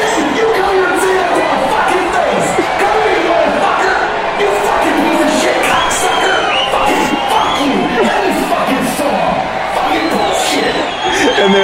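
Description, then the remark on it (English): A loud crowd shouts "yeah" and cheers continuously, many voices overlapping in a dense, excited roar with rising whoops, sustained at steady volume throughout. “just a chorus of … voices in the crowd that went, yeah!”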